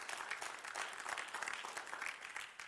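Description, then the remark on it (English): An audience breaks into steady applause during a sermon, many hands clapping together in a dense, continuous wash of sound with no voices standing out. “Want to clap? Let's clap.”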